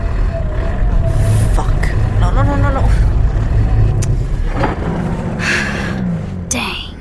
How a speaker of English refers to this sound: What is that noise? I think the car is running out of gas. Wait, what? I'm guessing the car's never run out of gas in the video game.